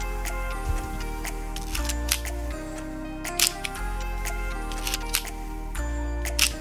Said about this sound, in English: That is my favorite half-frame camera, and one of my favorite cameras of all, the Olympus Pen FT.